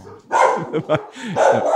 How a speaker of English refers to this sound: Belly, come here. Chaos. These dogs. A lot is happening. Belly's having a fun time barking.